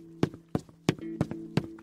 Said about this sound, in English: One of the animatronics has left the stage and is on the move. Footsteps can be heard getting louder towards the room.